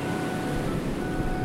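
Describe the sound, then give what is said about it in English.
Choppy water in a lagoon sloshes and rushes continuously around bumper boats, a steady, fairly loud wash with a low rumble and no pauses or voices. “the water is getting awfully choppy.”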